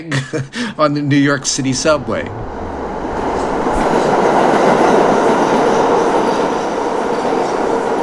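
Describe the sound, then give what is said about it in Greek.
A person talks briefly at the start, then a loud, steady rumbling roar of a New York subway train in motion takes over, with a faint rhythmic clatter of wheels on track. “Αφού διαπραγματεύτηκα με τον αποστολέα και τον έπεισα να την επιστρέψει άνευ όρων, την πήρα και τη μετέφερα στο γραφείο μου σε μια τσάντα μέσα στο μετρό της Νέας Υόρκης.”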